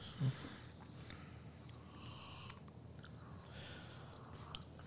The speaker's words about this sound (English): Lots of noisiness going on. A lot of sniffing and...